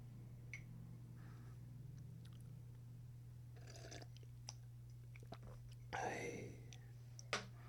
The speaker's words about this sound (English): Quick sip of water, boss. Don't mind me, boss.